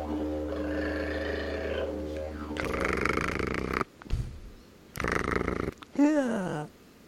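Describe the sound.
A voice imitates a didgeridoo: a low, buzzing drone that holds steady for a couple of seconds, then breaks into rough, growling bursts and ends with a wavering, wobbling hum.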